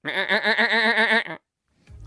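A single loud, pre-recorded goat-like bleat with a shaky, wavering tone lasts just over a second, then cuts to silence before a faint low rumble at the end.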